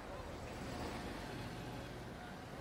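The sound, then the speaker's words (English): A steady, dense wash of city street noise at rush hour, with engines, cabs and passing vehicles rumbling continuously, and a faint murmur of voices from many people mixed into the busy background. “It's probably smack dab in the middle of rush hour, so there's a lot of traffic, a lot of people.”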